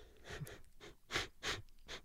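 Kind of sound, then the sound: vocal imitation, imitated gasp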